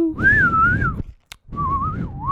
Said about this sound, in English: Now I'm going to whistle you all to sleep after the trumpet's over.